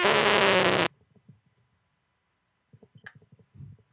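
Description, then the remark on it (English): A loud, buzzy fart over a phone call blasts for under a second, harsh and distorted through the phone line, then quiet murmuring voices follow in the background. “Did you just fart on the phone?”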